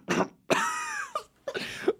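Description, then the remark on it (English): A person does an exaggerated, theatrical cough as a joke, taking turns doing different coughs: a short burst, then a long, strained, voiced hack, followed by a couple more rough coughs, loud and with no talking. “We took turns doing different coughs that would be funny if you were coughing into a vagina.”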